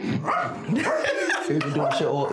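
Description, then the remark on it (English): A person's voice imitates a dog, giving a quick run of barks, yips and whiny yelps into the mic, loud and continuous for a couple of seconds. “And even bought, he had the best dog sound I've ever heard.”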